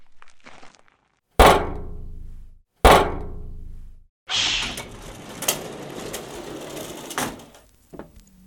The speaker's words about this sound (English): Here I am at the main entrance. I'll knock.